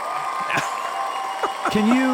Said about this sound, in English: Listen to the studio audience going berserk. Now they're cheering for you.